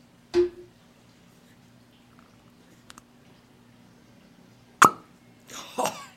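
A cork is pulled from a bottle of 40% ABV (80 proof) non-age-statement whiskey distilled at Middleton, with one sharp, hollow pop, surrounded by a few softer clicks and a brief squeaky rustle afterward. No one speaks.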